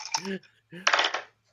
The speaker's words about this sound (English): Let me get my dice out and I'll roll